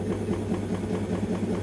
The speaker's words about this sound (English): Oh, here we go, right on cue, ruddy spin cycle going hammer and tongs.